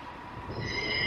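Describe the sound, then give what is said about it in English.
A steady rumble of train noise at Birmingham New Street, a busy railway station in the UK, with thin, high metallic squealing from wheels rising in after a moment and holding, moderately loud and continuous with no voices. “New Street, as you can hear in the background, is the fifth busiest railway station in the UK and the busiest outside of London.”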